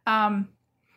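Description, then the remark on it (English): A cat gives one short, clear meow, a steady tonal cry that fades quickly, followed by near silence. “Hi, kitty.”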